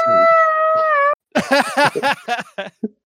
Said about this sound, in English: So Spike, that happened already. Is Spike just howling, or is Spike going to like explore the room and do anything about it?